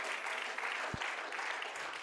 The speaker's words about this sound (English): I'm not going to miss one church service. Y'all can clap. Y'all are here.